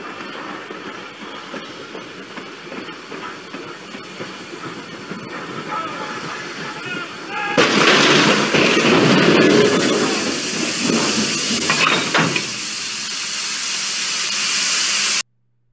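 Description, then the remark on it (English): A steam train chugs along steadily, then a loud, broad burst of hissing steam swells up for several seconds before easing back to the running engine and cutting off abruptly. “No one was harmed except a nice steam train.”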